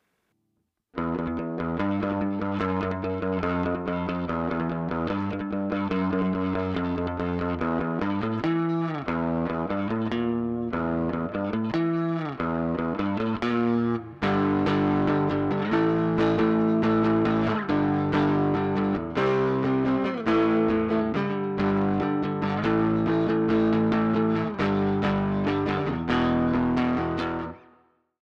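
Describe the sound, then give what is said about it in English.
A Fender Stratocaster electric guitar on the neck pickup plays clean, chordal phrases with a pulsing tremolo and a splashy spring reverb from the '63 spring reverb effect inside a GTX unit, steady for about half a minute with no voices. “Let's take a listen to the sound of it with a Fender Strat on the neck pickup.”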